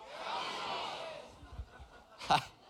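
An audience at a sermon yells out travel destinations all at once in a loud, overlapping jumble that fades after about a second, followed by scattered low thumps and one sharp burst of noise.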